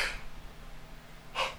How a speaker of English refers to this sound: Nice dramatic pause there. That wasn't a dramatic pause. I yawned. Dramatic yawn.